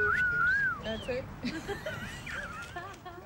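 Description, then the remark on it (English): Several women whistle wandering, sliding tunes while walking through the streets of Dublin as part of Women Walk the City, the whistles overlapping at moderate volume against a steady bed of street noise, with murmured voices and footsteps-like rumble underneath. “fellow flaneurs there whistling through the streets of Dublin as part of Women Walk the City”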